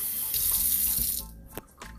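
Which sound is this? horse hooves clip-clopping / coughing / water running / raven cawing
water running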